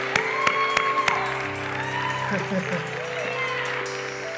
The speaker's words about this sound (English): Can we give those young people another hand clap of appreciation this morning? Didn't they do an awesome job?